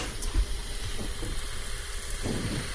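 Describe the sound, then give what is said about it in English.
A steady fizzing and sizzling from liquid just poured from a cup into a container, a continuous bright hiss with faint crackles and a few soft low bumps, with no voices. “And if you get close to the mouth, you can probably hear it sizzle.”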